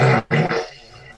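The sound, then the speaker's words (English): A loud, brassy fart sound effect from a soundboard button blares in two quick bursts, then trails off into a softer, sputtering rumble. The whole thing lasts just over a second. “Get that fart button ready.”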